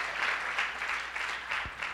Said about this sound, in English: Come on, it's a good place to clap. Everybody should clap on that one.